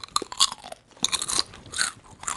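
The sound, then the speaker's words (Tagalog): Loud crunching of nacho chips being chewed, with repeated brittle crackling bursts in an uneven rhythm over about two seconds and no talking. “Wait, can I ASMR? Masaya ka na? Yun lang. Wait. Sige. Wait lang. Commercial, guys. Oh my God, this is like our sponsor. Nachos.”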